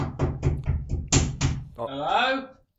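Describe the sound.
A rapid series of about seven loud knocks on a door in a quick, uneven rhythm, followed by a brief voice calling out.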